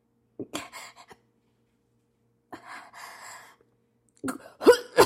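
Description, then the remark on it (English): A voice acts out a fit of coughing and wheezing in three bursts: a short rasping cough, a drawn-out strained wheeze, then harsher, louder hacking coughs. “It was the coughing.”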